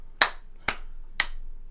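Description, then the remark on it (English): Three sharp hand claps made to sync audio recordings, evenly spaced about half a second apart, crisp with a quick decay, and no voices around them. “Oh, sorry, don't mind those claps. I'm just clap syncing my other 7 podcasts.”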